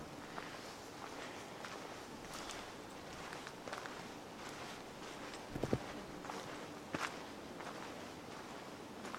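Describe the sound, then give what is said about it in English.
Steady footsteps of a person walking down a little way at an even pace, each step a soft crunching scuff over a quiet, hissy background, with one sharper thud midway and no voices. “I'm going to walk down a little bit, uh-huh.”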